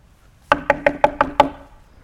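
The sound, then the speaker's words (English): Six quick, evenly spaced knocks ring out on a hollow, resonant surface, fairly loud, with no voices around them and a brief ringing decay after the last one. “And God knocks on his heart.”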